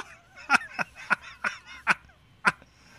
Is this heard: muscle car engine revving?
no